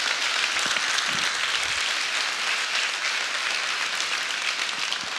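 audience applauding

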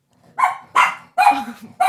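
dog barking

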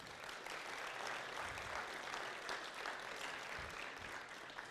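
audience applause

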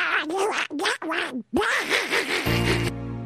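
toy duck quacking

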